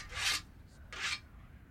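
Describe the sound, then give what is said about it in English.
Two quick rasping strokes of a sickle blade being sharpened, a bright scraping hiss each time with a short pause between, and no talking. “Get it nice and sharp now, Oak.”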